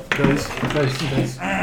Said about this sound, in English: Dice.